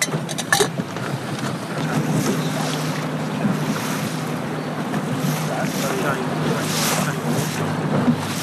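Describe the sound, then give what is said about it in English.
During a blessing of the boats at an island, small punts and pleasure craft move across the open sea, with a steady low motor drone under washing waves and gusty wind buffeting the microphone, plus a few brief knocks near the start. “And we now move along the punts of the island, which are the smaller boats.”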